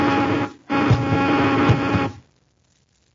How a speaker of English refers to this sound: Rorman, buzz them with the ray gun, quickly!